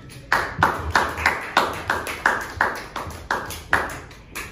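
An audience at a comedy show claps in a steady, even rhythm as a comedian is introduced, about a dozen sharp, moderately loud claps over a faint crowd hiss, with no one speaking.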